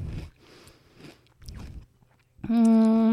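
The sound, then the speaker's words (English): Crisp crunches of someone biting and chewing a salt-and-vinegar potato chip, three or four separate bites, followed by a loud, sustained hummed vocalization at the end. “I'm trying the chip.”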